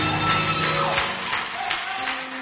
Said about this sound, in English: Oh, what a wonderful pastor we have. Can you give Jesus a round of applause because of our pastor?